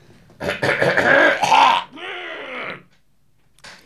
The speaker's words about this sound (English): Me clear my throat.